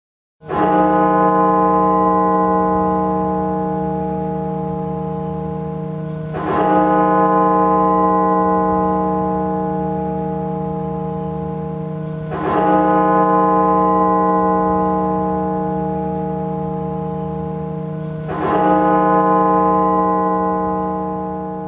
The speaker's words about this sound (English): This is the sound of the morning bell at Washington's National Cathedral. On December 15th, the cathedral tolled the bell 300 times, once for every 1,000 dead. The 300 tolls took a full half an hour.